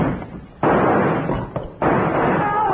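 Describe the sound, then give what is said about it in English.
Two sharp, loud gunshots crack about a second apart, each leaving a lingering, rumbling echo, fired from a gun rigged as a trap with a rawhide cord looped around its trigger and yanked, with no talking. “He fired at the first light.”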